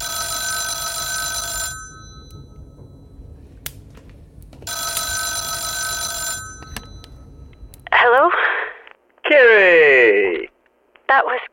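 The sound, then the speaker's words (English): A telephone at Homestead's, in a room with a fireplace, rings twice in long, bright buzzing bursts separated by a pause, followed by a few short, warbling, tinny sounds like a muffled voice through a receiver. “I literally just got to the phone and lit the fire.”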